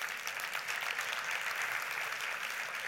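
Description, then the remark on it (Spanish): A crowd gives a round of applause to the Lord, a dense wash of many hands clapping at an even, sustained loudness for the whole few seconds, with no voices standing out. “¿Cuántos le dicen, cuántos le pueden dar un aplauso al Señor?”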